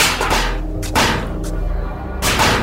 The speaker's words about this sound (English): What are those noises? They sound like gunfire.